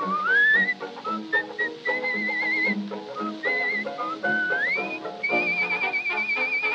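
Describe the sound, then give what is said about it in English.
A clear, bright whistled melody with sliding notes rises and falls over steady instrumental accompaniment, sounding like an old recording, moderately loud throughout. “That's the time to pucker up your lips this way and whistle.”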